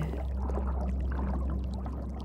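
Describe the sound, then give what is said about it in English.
A muffled underwater rush with a deep low rumble and scattered bubbling, steady for a couple of seconds, like sinking beneath the surface after a dive. “Shall we dive down and see what magical friend we're going to meet tonight? Big breath in. Down we go.”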